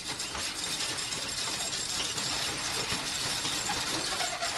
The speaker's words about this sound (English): In fact, when we first talked to him, he hadn't even checked his own lotto ticket, so he rolled up the metal doors to open the store up.